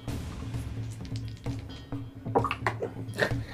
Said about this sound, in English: How do you always manage to... At least one dice bounces out every time.